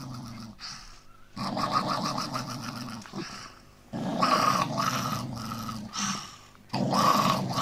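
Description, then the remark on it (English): A person growls at the fridge after a big night out. Deep, rough growling comes in four loud, drawn-out bursts separated by brief pauses, each one rumbling and snarling with a gritty, throaty texture and no talking over it. “This is a recording of me at the fridge after a big night out.”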